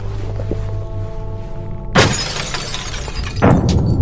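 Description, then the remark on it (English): A low, steady mechanical hum, then a hammer strikes a device twice to get it turned on, about a second and a half apart. Each blow lands as a loud, harsh crash with a rattling, breaking edge. “hitting it with a hammer was a bit excessive, don't you think?”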